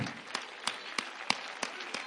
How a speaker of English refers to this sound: Clap your hands and give the Lord praise here today for all his goodness and his mercy.